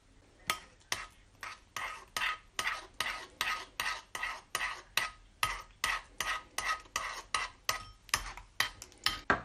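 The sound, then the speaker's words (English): A teaspoon stirs cream and a drink in a bowl, making steady, rhythmic scraping swishes, about two or three strokes per second, repeated over twenty times with no talking. “Yeah, I'm just using a teaspoon actually just to stir it in.”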